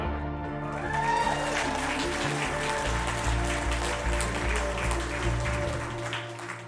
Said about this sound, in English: Man, isn't that awesome? Can we just give him another round of applause?